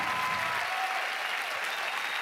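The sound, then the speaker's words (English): Steady, dense applause and cheering from a crowd for military veterans standing in the room. It fills the whole stretch at an even, fairly loud level, with faint whistles or cheers woven into the clapping. “And as I was walking through the room, stay standing, come on, let's cheer on those who have given their time, their sacrifice for our freedoms.”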